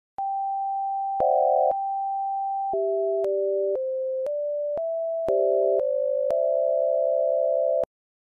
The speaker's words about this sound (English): The optophone was intended to be like a scanner, and you could use it to translate almost any book from print to tones.